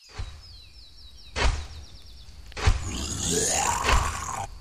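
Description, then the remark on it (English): A monstrous orc roar swells up loud and raspy, its pitch bending and wavering, after two sharp thumping hits and some thin, high chirping streaks early on. No one speaks. “What in Sam Hill is that? I don't know. I think it's an orc.”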